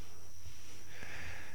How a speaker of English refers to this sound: You hear the sniffles?